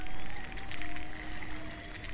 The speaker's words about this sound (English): The faint crackle and pop of melting ice drifts through the speakers. It hisses and sighs as age-old glaciers dissolve into the sea.